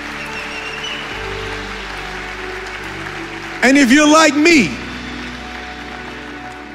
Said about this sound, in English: Come on, give God a great big hand clap and shout of praise.